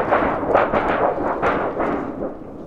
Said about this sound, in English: Thunder.